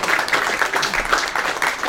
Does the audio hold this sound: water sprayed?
no